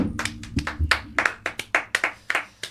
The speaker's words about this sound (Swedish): Applåd.